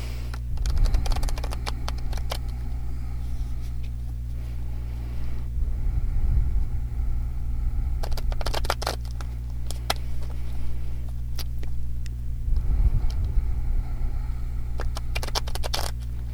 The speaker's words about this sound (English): And I use the Osho Zen Tarot deck. Please give me a moment while I silently pray and ground myself in the cards as I shuffle.